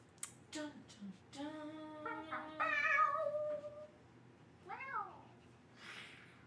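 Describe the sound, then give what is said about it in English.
A person imitating a cat makes several meows: a long, wavering yowl in the middle followed by a shorter, rising mew, loud, with quiet gaps between, and no talking. “That was my well, better than my meow.”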